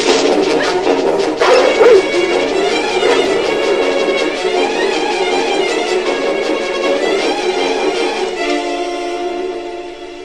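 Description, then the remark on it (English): In a film scene, a dog in pursuit barks loudly in short bursts near the start, set against a dense, sustained wash of dramatic orchestral music that carries on throughout and thins slightly toward the end. “Woundwort and the dog in pursuit”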